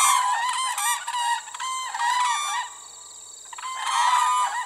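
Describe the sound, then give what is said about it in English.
Loud, trumpeting calls of whooping cranes, an endangered species, ring out in overlapping bursts where the Peace and Athabasca rivers run through grasslands, boreal forests, and wetlands, pausing briefly in the middle before the bugling resumes strongly. No voices are heard. “Here, one of the world's most endangered birds, the whooping crane, comes to dance, nest, and raise its young.”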